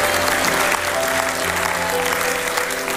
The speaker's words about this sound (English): Give God a clap. Give Him a praise. Give Him a shout. Give Him something.